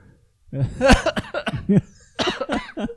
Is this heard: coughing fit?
yes